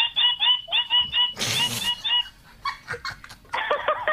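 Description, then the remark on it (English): A person's voice imitates a bird call: a rapid series of short, high, squeaky chirps in bursts, broken midway by a loud breathy rush, then more quick chattering squeaks. “I don't really know if this is any good, but okay, so I'll make a bird noise.”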